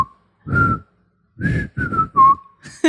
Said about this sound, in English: You're a beautiful whistler. You have a beautiful. Let's hear a little sample. That's like a songbird.